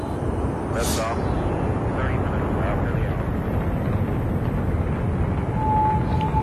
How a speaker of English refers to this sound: Then Lolo got into the spacecraft and all the engines were turned on.